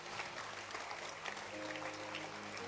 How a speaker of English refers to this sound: Clap your hands.